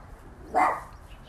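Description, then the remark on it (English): A single short dog bark rings out against a quiet background hum, with no talking during the brief moment. “A dog's barking at nothing.”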